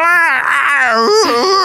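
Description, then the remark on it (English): A person imitates the shriek of a cat being trodden on: one loud, strained, wailing yowl that holds for about a second and a half, its pitch lurching upward in jumps near the end. “The worst noise when you tread on a cat.”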